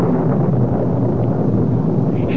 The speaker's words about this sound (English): Thunder. I think so. It just occurs to me. I've always been at my best during a thunderstorm. True enough. And tonight, to judge from that sky out there, will be a night of elemental fury.